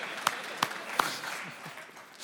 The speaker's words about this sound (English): So funny. One person's clapping. Everybody else is like, I'm not going to clap for this guy.